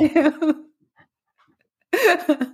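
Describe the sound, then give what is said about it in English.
A dog whimpers and pants in two short, whiny bursts separated by a brief quiet pause. “I think our podcast is over now. I have to feed the dogs.”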